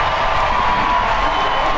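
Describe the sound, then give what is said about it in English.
A crowd cheers and claps at a softball game being played at the same time behind a baseball game, a steady, loud wash of voices and applause that holds for the whole moment without a break. “The cheer you hear is for the softball game happening concurrently behind us.”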